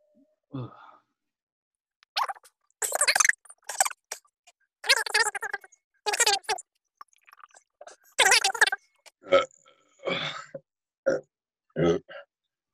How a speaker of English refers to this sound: Yeah, I want to apologise, but I'm going to fast forward on them burps.